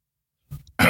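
A man coughs up close: a short throaty rasp, a brief pause, then one loud, harsh cough that bursts out sharply at the end. No talking.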